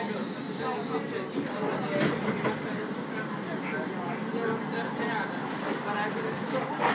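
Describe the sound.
A steady, rumbling drone of a tram running along its rails, heard from the back of the car, with faint clicks and indistinct murmuring voices of passengers mixed into the continuous noise.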